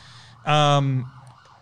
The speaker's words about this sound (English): If you can't hear that, that's just, you know, that's the Redfern thing. We've got sirens here every single day.